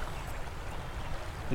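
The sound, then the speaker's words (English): The Severn Bore, a tidal bore surging up the River Severn, heard as a steady, broad rush of churning water that holds at an even level throughout, with no voices. “Well, I've never seen the Severn Boar before.”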